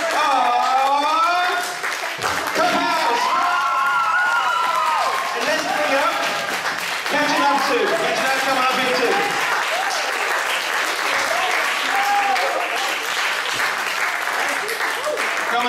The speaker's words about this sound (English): Deserve more of a round of applause than that.